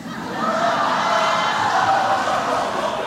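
A large crowd lets out a collective gasp, reacting to New York governor Andrew Cuomo rebuking the Make America Great Again slogan, that swells into a loud, sustained murmur for a few seconds with no single voice standing out.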